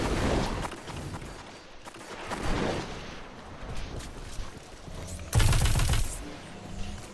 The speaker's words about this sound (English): Need to back up. That's a hand cannon. Nope. Not engage that hand cannon.